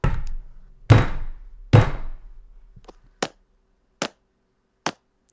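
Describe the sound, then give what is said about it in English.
Knocking on a door: two heavy, booming thuds followed by three sharper, lighter raps, evenly spaced, with no talking. “No, that was knocking.”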